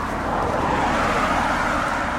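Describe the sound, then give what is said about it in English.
A Nissan Maxima car drives past, its steady engine and tire roar filling the short clip at a loud, even level with no voices. “Well, now that we have new content, let's name the cars. That's a Nissan Maxima.”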